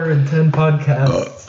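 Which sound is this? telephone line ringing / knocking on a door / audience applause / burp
burp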